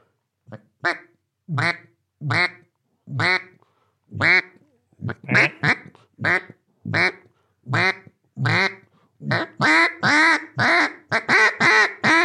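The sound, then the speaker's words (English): A duck call blown in a steady series of flat, clean quacks, about twenty short blasts with brief gaps, speeding into a faster, louder run near the end. Prominent, with no talking. “Okay, wait, flat quack, listen.”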